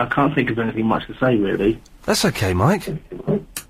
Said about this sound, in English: …? Are you on speakerphone? Because there's a strange echo.